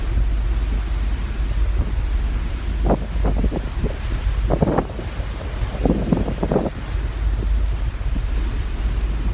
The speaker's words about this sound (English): really windy.